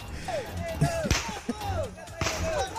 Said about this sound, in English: I want to play a piece of this Spanish news report here, and then we'll come back and we'll translate this and we'll talk about exactly what is happening here. And you can start with this gunfire. Watch.